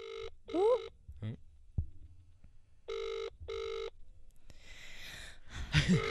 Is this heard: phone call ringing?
yes